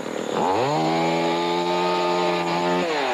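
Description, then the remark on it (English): In an ad for Dworkin Chevrolet of Derby, a chainsaw engine revs up sharply, holds a loud, steady buzzing whine for a few seconds, then climbs again at the end, with no voices. “Oh, no. Not Chainsaw Chuck again.”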